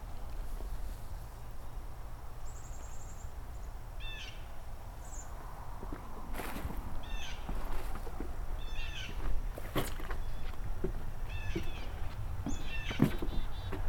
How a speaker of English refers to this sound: Hearing yellow rump. Nice tick sound.